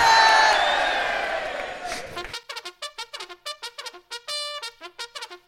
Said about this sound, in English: And oh, give us a cheer if you'd rather hear the Kashmir crisis first.